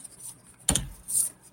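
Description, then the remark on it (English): A deck of cards being shuffled: one quick, papery snap of cards followed a moment later by a soft, high rustling hiss. Quiet overall, with no voices. “Let me shuffle these.”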